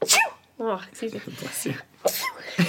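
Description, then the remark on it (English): A small, squeaky sneeze bursts out at the start, followed by brief voiced sounds and then another short sneeze-like burst, all moderately loud. “Your little mouse sneezes.”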